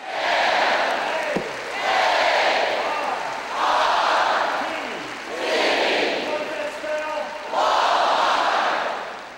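A large crowd gathering at 6 a.m. in a basketball arena in Fayetteville, Arkansas, roars in rhythmic waves, five loud swells of cheering and chanting rising and falling about every two seconds, echoing through the arena.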